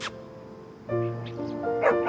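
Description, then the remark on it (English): A downstairs dog barks at a cat a few times in short, sharp, moderately loud bursts, with no one talking over it. “the downstairs dog, is barking at Mr. Minsky's all-night cat”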